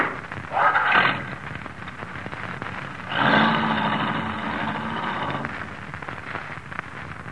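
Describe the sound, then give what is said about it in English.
An old car engine runs with a rough, noisy rumble, surging louder twice, briefly near the start and then for a longer stretch midway, before settling back to a steady drone. No one speaks. “This your car? Yeah. I'll sure be glad to get rid of this clunk.”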